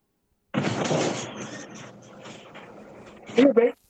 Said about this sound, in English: I'm in my garage right now. Give me one second. Let me shut some of this door a little bit so I can get some of this light off.